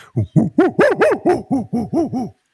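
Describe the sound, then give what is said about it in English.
A person imitates a monkey call: a quick series of about nine loud, rising-and-falling hoots in a steady rhythm, with no other talking. “I got to do the monkey.”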